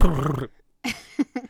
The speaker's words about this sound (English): Our dog.